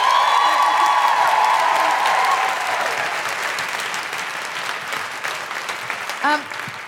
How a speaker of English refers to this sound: Big round of applause